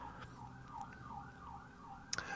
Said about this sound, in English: More sirens on my end.